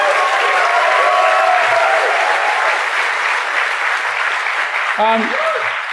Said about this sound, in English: Give him a clap for goodness sake.